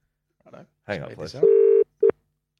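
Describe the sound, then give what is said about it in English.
A brief bit of voice gives way to a steady electronic telephone tone, then a second short beep, like a call being dialed and ringing through, fairly loud. “Who are you calling?”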